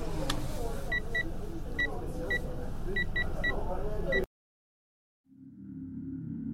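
A car drives off: a steady loud engine and road rush with a series of short high beeps, a sudden brief silence, then a low, muffled engine rumble.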